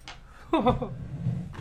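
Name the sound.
sneeze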